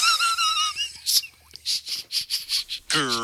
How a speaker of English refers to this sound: I'm starting to feel a little queasy. I don't know what's happening. I just don't feel good. I gotta tell you, bud, I'm having trouble breathing.